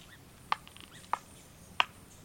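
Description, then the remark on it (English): A woodpecker chips at wood to excavate a cavity in fall, three sharp, evenly spaced knocks about half a second apart, crisp against a quiet outdoor background. “But now that fall has arrived, we may hear an excavating sound again.”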